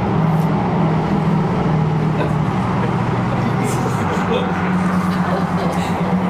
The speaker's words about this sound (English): Tell the diesel truck to go on.